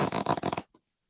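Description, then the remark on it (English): A backpack zipper is pulled open in one quick, raspy zip lasting about half a second, followed by a brief faint rustle and then silence. “There's other zippers in here. Check the other zippers.”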